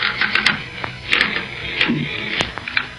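A bed creaks and squeaks in a series of irregular, scratchy bursts as someone shifts their weight to get up, fairly loud, with no voices.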